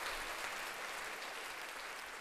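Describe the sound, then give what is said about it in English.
Steady applause from many hands for the speaker's wife, a dense, even crackle of clapping that holds at a constant level for a couple of seconds with no voices. “There's a round of applause for you.”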